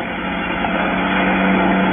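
An outboard motorboat engine drones steadily as the boat heads up a lake, a continuous low buzzing hum with a constant pitch and even loudness throughout, with no voices or other sounds.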